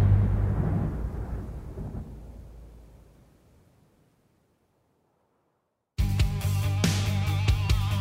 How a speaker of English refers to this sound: Might want to get a move on, though. Storm's just about here.